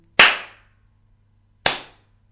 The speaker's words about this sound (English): But it's the same clap. It's the same clap. It is, It's a slow, steady context clap. Context is everything. Maybe it's slightly faster. Let's compare. Yeah. So this is the sarcastic clap, as I believe it's done.